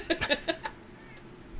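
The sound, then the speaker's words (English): A cat named Jazzy lets out a quick run of about five short, chirpy meows in under a second, then falls quiet against a faint background hum. “Is that a cat I hear?”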